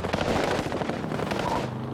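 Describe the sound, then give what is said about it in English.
A dense, rapid burst of machine gun fire, sharp cracks overlapping into a continuous loud rattle for about two seconds, as Dragna's men fire a barrage of bullets at Cohen's car. “He immediately ducked down as Dragna's men fired a barrage of bullets at his car.”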